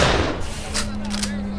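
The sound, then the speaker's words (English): Two sharp 12-gauge shotgun blasts, fired by Officer Brinegar at a prison bus as inmate Gonzalo Lopez puts it into gear, roughly half a second apart, crack over a steady low hum and constant background noise. “Back on the bus, Officer Brinegar exited the back door with a 12-gauge shotgun. He sees the struggle and yells at Lopez to stop.”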